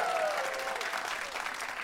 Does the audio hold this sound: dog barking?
no